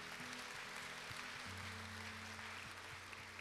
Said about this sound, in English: So let's give the Lord a round of applause for that.